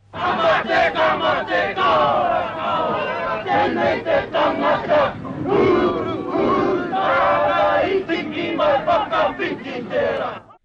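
A crowd of protesters chants and shouts loudly together in rough rhythmic bursts as they are forced onto police buses, with raised, strained yelling of defiance rising above the mass of sound throughout.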